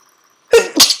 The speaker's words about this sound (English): Ooh, a sneeze is coming. I'm sorry, guys.